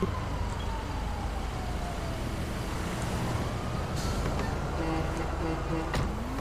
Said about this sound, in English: And ma'am, please stay in your vehicle. There's a lot of traffic, and I don't want you to get out and get yourself hurt by the cars.